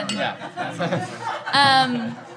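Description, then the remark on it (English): Amid laughter and chatter during a toast, a voice makes a high, ringing vocal imitation of glasses clinking, because the cups are plastic. There is one short, bright tone partway through, fairly loud. “I'll make a clinking sound so we got plastic.”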